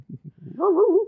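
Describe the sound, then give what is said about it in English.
A dog attacks, giving a few short, low growls that swell into a longer, wavering snarling bark, fairly loud, with no talking. “And then all of a sudden, some dog attacks.”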